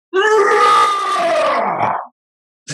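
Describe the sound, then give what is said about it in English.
A man's voice imitates a lion's roar: one long, loud, harmonically rich growl lasting about two seconds that slowly drops in pitch and fades out, followed by silence. “I named it Global Lion Intellectual Property Management Incorporated because I am a global lion. So I'm going to give you and your audience a roar,”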